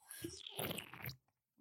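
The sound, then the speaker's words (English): Quiet wet mouth sounds of someone sipping lime-flavored sparkling water, with a soft crackling fizz, two short bursts, then a brief pause before another smack. “You're going to have a sip of sparkling water that is lime flavored. Some ASMR.”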